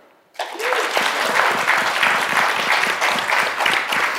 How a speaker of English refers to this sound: That was a golf clap.